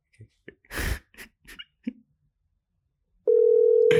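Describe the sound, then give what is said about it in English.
An unanswered phone call ringing out: after several short, breathy bursts and a pause, a loud, steady mid-pitched ring tone sounds for about half a second before a burst of noise. “Oh, this bitch ain't gonna pick up.”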